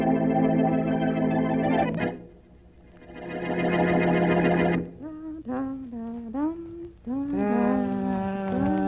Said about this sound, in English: will you cut out that humming? Sorry, I didn't know it was annoying you. Well, it is.